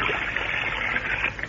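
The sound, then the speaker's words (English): Hot, steaming water splashes and swirls in a bathtub, a steady, fairly loud wash of churning sound with no pauses and no one speaking. “Better come while the water's hot.”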